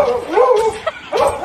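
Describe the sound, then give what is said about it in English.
A dog barks in two drawn-out, yelping bursts separated by a short pause, loud and clear with no one talking over it. “That's a jump I've never seen before from a dog.”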